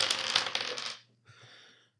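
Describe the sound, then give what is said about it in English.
Dice clatter across a hard tabletop in a bright, rattling burst, then after a brief pause a softer, shorter rattle as they settle. No voices. “So I'm going to do one, just because this has gone on way too long, all I'm going to do is just one key roll here.”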